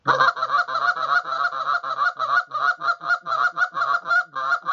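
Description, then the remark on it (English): A rapid, continuous series of goose honks blown on a goose call, about fifteen loud nasal calls in quick rhythmic succession, clear with no talking. “It's a great sequence right there. Even with this call, you know, when the geese start to pull away from me”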